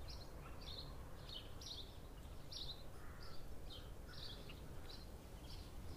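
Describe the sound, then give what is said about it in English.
Birds chirp and sing outdoors on a day of fine weather in a steady run of short, high, soft calls, over a constant low rumble of wind or background noise. “Seemingly not yet exhausted from the pre-theatre performance, the birds continued to sing wherever we went.”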